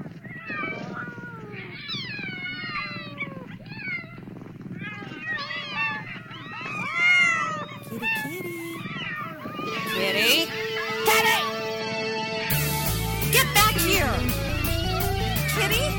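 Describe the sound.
A cat meows repeatedly with drawn-out, wavering cries, while a voice is faintly present; later, scraping noise and a steady low buzz take over.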